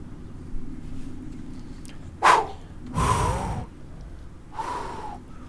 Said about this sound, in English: Not pleased about this. Hyperventilating. Heavy breathing.